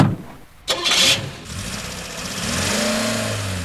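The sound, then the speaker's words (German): A car engine cranks with a short grinding burst, catches, and settles into a steady hum that rises in pitch as it revs and a man drives the car away, with no voices. “Nach etwa 10 Minuten kehrte er zu seinem Wagen zurück und fuhr weg.”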